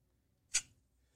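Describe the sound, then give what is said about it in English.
A clock ticking softly, with one crisp, sharp tick and the start of another about half a second later, heard alone, just after the clock is started. “I'm going to start the clock.”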